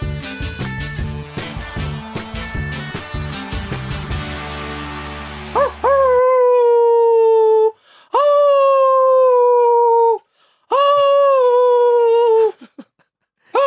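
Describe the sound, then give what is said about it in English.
A dog lets out three long, loud, wavering howls with brief pauses between, starting just as a few seconds of piano-like music end, with another howl beginning at the very end. “Thank you, Sammy Amoebi the dog.”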